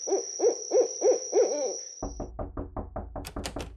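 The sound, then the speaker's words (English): An owl gives five quick, evenly spaced hooting notes over a faint steady high whine, then a rapid series of loud knocks on a door takes over. “Today's Name That Sound is an owl.”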